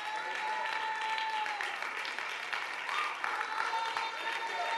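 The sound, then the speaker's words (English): A crowd claps their hands to God steadily in a dense, continuous wash of applause that stays loud for about five seconds, with faint voices and a sustained tone mixed in beneath. “Stand on your feet and clap your hands to God today.”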